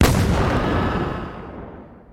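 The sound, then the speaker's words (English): A single heavy cannon blast booms out, its low rumble rolling and slowly fading over a couple of seconds, loud with no voices; one shot of a 50-round salute fired by defeated soldiers at Fort Sumter to honor the U.S. flag before lowering it. “Robert's exhausted, defeated men fire a 50-round salute to honor the Stars and Stripes”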